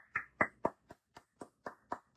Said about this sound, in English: Congratulations, man. I'm putting the phone down. I'm going to give you a clap for that.